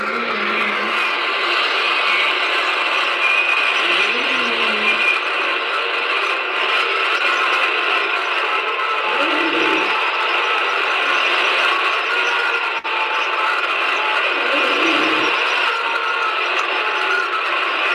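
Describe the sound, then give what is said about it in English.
Steady hissing static from a recorder left running in a house fills the whole recording, with faint, low wavering tones swelling and fading underneath a few times, like very distant wailing buried in the noise. “Yeah, the background noise of just like the static, but almost layered in there, it almost sounded like very distant, kind of like wailing.”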